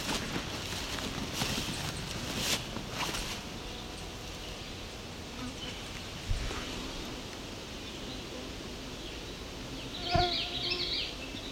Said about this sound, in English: So we appear to have yellow warbler above us, making all that sound. Female yellow warbler.